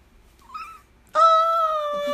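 A cat named Sophie meows twice: first a faint, short chirp, then a loud, drawn-out, steady meow lasting about a second. No one speaks.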